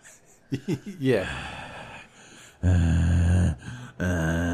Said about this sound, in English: I liked it better before we started recording. But when you could hear me breathing.